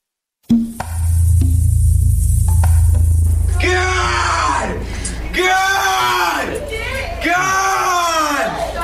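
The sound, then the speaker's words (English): A man screams loudly in a series of about four long, strained bursts as he enters a courtroom for his first appearance before a judge, following a few seconds of low rumbling room noise. “screaming as he entered a courtroom Sunday for his first appearance before a judge.”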